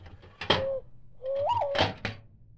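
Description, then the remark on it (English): A quail call sounds twice, each a mid-pitched whistled note, the second rising and bending, both punctuated by sharp clicking bursts. No one speaks. “But this one's a quail call.”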